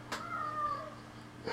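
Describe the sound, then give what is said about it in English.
A single drawn-out meow from a pet cat, starting with a soft burst and gliding slightly downward in pitch, over a low steady hum, with no talking. “I'm sorry, I'm dying right now. My cat.”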